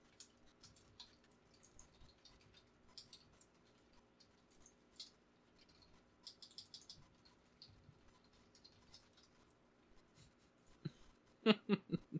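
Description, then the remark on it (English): Quiet, steady keyboard typing of messages in Slack, with rapid irregular clicks, ending in a short burst of louder, heavier key presses; no one speaks. “Are you typing”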